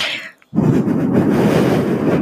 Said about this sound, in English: Hear that? That's me breathing in. So if I stay a little back now and I breathe, you guys can hear me a lot better. But if I get really, really close, you can hear that.